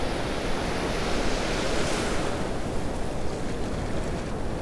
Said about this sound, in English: Okay, we got a big wave coming in.